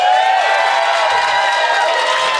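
A crowd at the Bonfire cheers loudly and steadily for DJ Lewitsky, a dense wash of shouts and whoops with clapping mixed in, holding at full volume for the whole stretch without a break.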